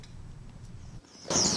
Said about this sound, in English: Birds fly among the branches tweeting as one after another the cherries come into bloom.